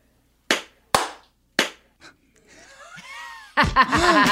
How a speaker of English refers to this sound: Oh yeah, are we clapping? I think since fourth grade, I've never been sure of whether it's 3-2-1 clap or 3-2 clap.